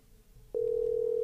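A click, then a steady, loud electronic phone tone that holds unbroken to the end, as a call is dialed and starts to ring. There is no talking, just a faint hum beneath.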